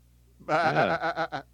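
A sheep-like bleat rises and wavers, then breaks into three quick, trembling pulses before stopping. The single call is clear and fairly loud against a quiet background.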